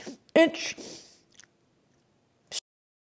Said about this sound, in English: She took the teeniest, tiniest bite. It's interesting, she said, chewing slowly.